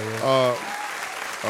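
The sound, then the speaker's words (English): A brief patter of hand claps fills the gap between two short stretches of voice, the clapping a dense, even crackle of moderate loudness lasting under a second. “Hand claps on that, man.”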